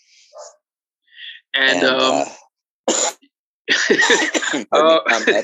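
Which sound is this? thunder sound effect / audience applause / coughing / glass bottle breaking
coughing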